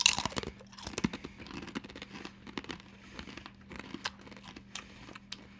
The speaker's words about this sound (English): Dink it. And crunch it.